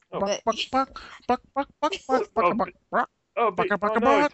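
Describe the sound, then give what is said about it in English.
A voice imitates chicken clucking, rattling off a steady run of loud, melodic cluck syllables almost like a sung tune, with one short pause before the clucks pick up again. “You just got cluck rolled.”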